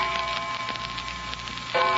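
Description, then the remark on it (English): A tiny bell rings faintly from upstairs, its thin, high tone sustained over soft ticking, with a brighter chime joining near the end. No one speaks. “George, a bell. Tiny bell. Uh-huh. It's from upstairs, isn't it?”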